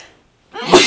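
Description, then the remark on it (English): A single loud sneeze bursts out after a brief silence, with a sharp breathy onset and a bright, forceful peak that trails off quickly. “Bless you.”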